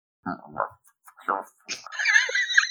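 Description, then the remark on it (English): A person vocally imitates a dog, making a few short gruff voiced bursts followed by a higher, squeaky whining sound, moderately loud with no other sounds around it. “No, that's your dog sound.”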